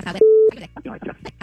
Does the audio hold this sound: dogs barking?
no